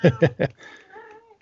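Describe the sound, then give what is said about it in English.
An old, senile female cat meows: three short, loud, rapid calls followed by a quieter, drawn-out wavering meow that trails off. “I got this fucking senile old cat and she's going to be like, she's going to be in the podcast if I don't go That's get her.”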